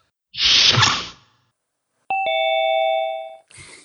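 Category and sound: household object, doorbell chime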